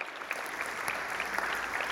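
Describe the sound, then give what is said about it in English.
A crowd claps steadily throughout, a dense wash of many hands at a moderate, even level with no voices rising above it. “Yeah, you can clap at that.”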